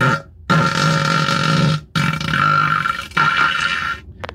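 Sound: fart noises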